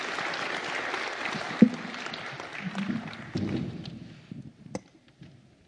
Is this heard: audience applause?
yes